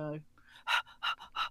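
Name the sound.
large dog panting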